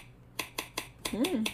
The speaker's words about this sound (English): Okay. Watch how fast I could snap.